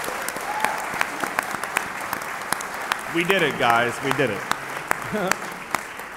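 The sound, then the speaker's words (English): A live audience at a convention in Providence claps steadily throughout, a dense wash of overlapping hand claps with sharper individual smacks, while a couple of voices speak excitedly over the applause partway through. “So let's give ourselves and the convention a big round of applause.”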